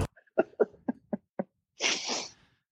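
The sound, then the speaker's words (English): A voice imitates a fart noise: a quick string of five or six sputtering lip pops, then a longer, breathy, hissing blast that trails off. No words are spoken. “It's supposed to be like a fart noise.”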